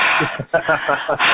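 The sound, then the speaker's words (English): A voice performs heavy, breathy panting with hissing exhales and brief moan-like voicing, several quick breaths, mimicking exaggerated orgasmic breathing. “Do some orgasmic breathing.”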